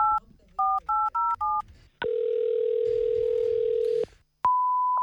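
Five quick dual-pitched keypad beeps of telephone dialing in a brisk rhythm, followed by a long, steady, lower-pitched line tone, a sharp click, and then a brief higher beep. No one speaks.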